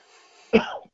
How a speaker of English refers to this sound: You got a bit of a cough? Yes, I had a bit of a cough, yeah.